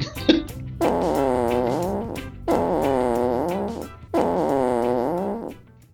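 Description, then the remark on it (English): A voice blows three long, buzzy raspberry-like sounds in a row, imitating farts. Each drawn-out, wavering burst lasts over a second and is loud, with short gaps between them. “Yeah, he was making fart sounds somewhere.”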